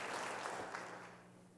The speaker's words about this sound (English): Isn't it great to have our brother back with us this week? Amen. You didn't know you was going to get a round of applause.